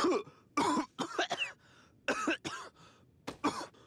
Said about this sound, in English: Guess I'll just go back to coughing.